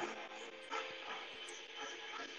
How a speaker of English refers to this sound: Dog sniffing up the storm. Uh-oh. Smell something.